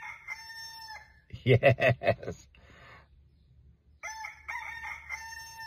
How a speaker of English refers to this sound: Our friendly rooster Leroy is reminding you. It's time to rise and shine.